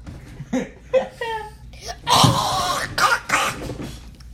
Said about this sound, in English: Sorry, I coughed.